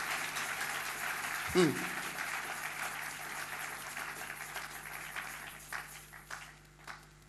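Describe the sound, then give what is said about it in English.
A church audience claps for Jesus during a sermon, a dense, sustained wash of applause that lasts throughout and tapers slightly toward the end, with a brief low thump and a voice faintly audible beneath. “No, I'm still not satisfied with the clapping. When you clap, I'll continue preaching.”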